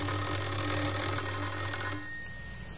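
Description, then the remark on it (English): An electric doorbell at a house in Oxford, pressed by a man on a Monday morning, rings in one steady, rattling burst for about two seconds, then cuts off, leaving a faint high tone hanging briefly. No voices are heard. “He had a worried expression on his face as he walked up the few steps and pressed the doorbell.”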